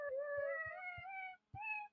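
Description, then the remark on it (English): A cat meow sound effect plays twice: a long, drawn-out meow followed by a short one, loud over a soft, steady low thumping beat. “the best part is you've got animal noises like... Who let the dogs out? Or the cats.”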